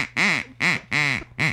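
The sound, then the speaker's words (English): Four loud, nasal duck quacks in quick succession, evenly spaced, each a short buzzy honk, from a duck called Mr. Duck. “No, it's Mr. Duck.”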